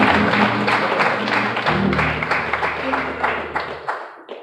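An audience claps together as a hand clap of praise to God, in a dense, sustained burst of applause lasting about four seconds, with a low droning tone beneath it, before the clapping thins out and stops.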